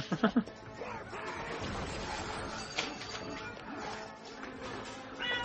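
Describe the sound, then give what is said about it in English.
A cat named Duchess gives a few short meows in quick succession right at the start, followed by a steady wash of busy, mechanical-sounding background noise. “Yes, I hear you. Uh-huh. This should be all my thing, guys, by the way, this cat, if you can leave me alone.”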